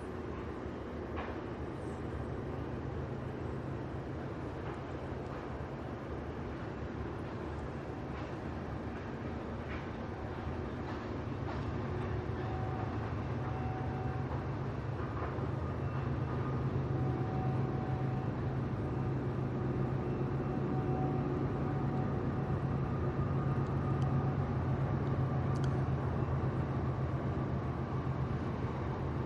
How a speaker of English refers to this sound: Now, this must be the same freight with engines in the middle as well.